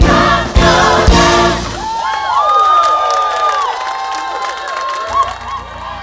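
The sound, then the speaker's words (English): A church audience, called on to clap and praise God, bursts into loud clapping with a few sharp hand slaps, then swells into a chorus of overlapping cheers, whoops and high shouting voices, while scattered applause continues underneath. “Come on, put those hands together. Clap your hands.”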